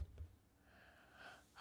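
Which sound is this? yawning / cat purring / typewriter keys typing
yawning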